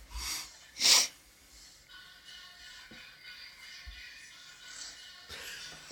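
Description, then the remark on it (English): An English bulldog gives a couple of sharp, wet snorts, the loudest one bursting out near the start, followed by quieter snuffling and shuffling noises. “You can hear it snort. Oh, that's an English bulldog, by the way,”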